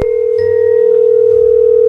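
A steady telephone dial tone hums continuously and loudly for the whole moment, an unbroken electronic drone with no voices over it, as an outgoing call is placed to a listener's best friend in Huntington Park.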